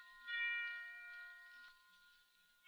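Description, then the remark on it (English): Bells ring out for Christmas with a sustained, shimmering tone that hangs in the air for a few seconds, fairly faint, with a fresh strike near the end. “They're ringing for us. They're wishing us a Merry Christmas.”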